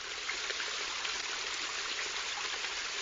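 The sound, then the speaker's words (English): Steady, even rush of falling water, soft and continuous like a gentle waterfall, with a fine splashing texture and no voices throughout. “You step into a tranquil hall in which the eastern wall has been replaced by a gentle waterfall.”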